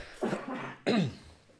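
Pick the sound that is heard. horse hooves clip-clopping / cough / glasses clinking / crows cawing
cough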